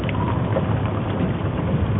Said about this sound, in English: Dwight, are you peeing? I'm peeing in this empty can.